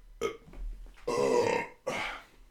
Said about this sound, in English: I like doing the alphabet. When you burp? Yeah. Yeah, that's gross.